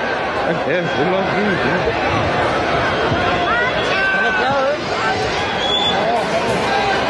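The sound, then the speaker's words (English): A loud, dense crowd roars and chatters continuously in a video being played back, many overlapping voices forming a steady wall of babble with occasional shouts rising above it. “All you can really hear is the crowd.”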